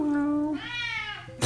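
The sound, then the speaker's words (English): A person mimics the yowl of a big black cat coming out of the woods: one long, drawn-out wail that slides upward in pitch, cut off by a brief burst of noise at the end. “And here comes this big black cat out of the woods going, wow, wow.”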